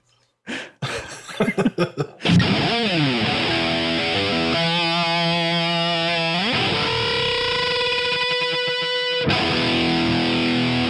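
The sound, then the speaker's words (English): A guitar effects pedal demo: a few choppy distorted bursts, then a loud, sustained fuzzy tone with swooping pitch bends and a warbling, wobbly modulation before it cuts off. No talking. “okay, so that's the wetter box.”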